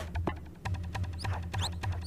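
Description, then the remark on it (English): Short, high-pitched sneaker squeaks from a video game basketball court chirp repeatedly in quick upward sweeps, layered over a steady low hum with faint rhythmic thumps underneath. “And then once the game begins, it's incessant cricket sounds, like the feet squeaking on the seat.”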